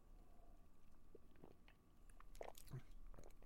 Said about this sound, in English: Today, I have peach iced tea. I'm going to take a sip.